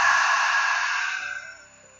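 A sharp exhale through the mouth during a guided breathing exercise: a breathy, airy rush that starts strong and gradually fades out over about two seconds, with no voices.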